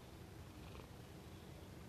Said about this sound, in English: You have Jazz on your stomach, he's purring, super warm, giving you love eyes